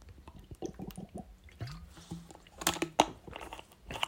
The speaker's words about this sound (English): All right, good water break.